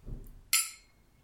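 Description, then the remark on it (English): Glasses of a 46% alcohol-by-volume, naturally colored, non-chill-filtered spirit clink in a toast during a tasting: a single bright, sharp clink ringing briefly before fading out, with a soft low rustle just before it. “Cheers. Cheers.”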